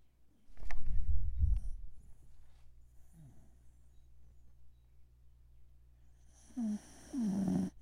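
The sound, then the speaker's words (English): A dog named Ween Dog snores: a loud, rumbling low snort early on, then quieter breathing, followed by two shorter wheezy, nasal snores near the end. “Hear that? That was Ween Dog snoring.”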